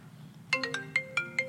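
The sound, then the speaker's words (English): An unanswered phone's ringtone plays a quick melodic run of six bright, chiming notes over a faint low hum, clear, with no one talking. “Yeah, the whole time you're getting notifications and it never stops.”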